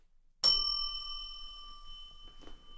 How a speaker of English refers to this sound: I was going to say more, but I totally forgot to, and then I decided to hit the bell.